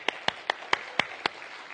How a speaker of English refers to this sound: Hey, show of applause.